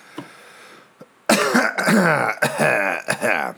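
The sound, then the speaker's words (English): A loud, drawn-out burp after eating Boom Chicka Pop white cheddar popcorn, starting abruptly and rumbling on for over two seconds, its throaty, croaking tone breaking into a few uneven pulses, preceded by soft mouth clicks. “I was listening to other podcasts, and I was, oh, light bulb, burp, I got two to do.”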